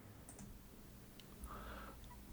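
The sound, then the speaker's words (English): Seven dice are rolled, rattling and clicking, with a few quiet, scattered taps and a brief soft clatter against a hard surface, with no talking. “Total result of these 1, 2, 3, 4, 5, 6, 7 dice that I rolled is 1 advantage.”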